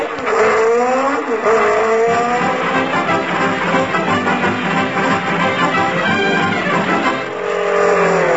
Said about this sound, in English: Hey, lady, did a jeep go past here full of soldiers and books?